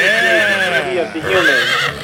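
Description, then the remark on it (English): Someone imitates a horse's whinny with their voice, a loud, wavering, pitch-sliding neigh in two close bursts with a brief dip between them. “So what, was he making like a horse motorbolt sound?”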